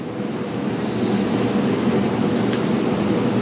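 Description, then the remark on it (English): A steady, rumbling roar of spaceships passing overhead in a video game, a thick low drone with a faint hiss on top that holds constant throughout, with no one speaking. “I hear a ship. Whoa, several ships.”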